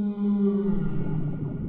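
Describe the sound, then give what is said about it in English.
A single long, low sperm whale call moans steadily with rich harmonic overtones, its pitch sagging slightly toward the end. It is fairly loud, with no voices. The call comes from the sperm whales in Dominica's waters. “let's not forget the largest of the animals in Dominica, the sperm whales”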